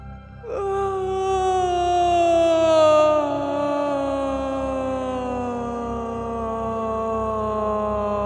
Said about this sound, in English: Breathe in through your nose, feeling the air stretch down through you. And exhale with a vocal yawn that starts at the top of your head and floats down to your toes.